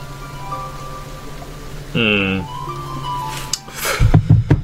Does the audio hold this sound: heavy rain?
yes